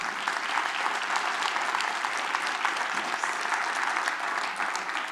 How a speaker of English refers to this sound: See, you all know that my note said, let's give them another round of applause, and you filled in. So, way to participate. I love that.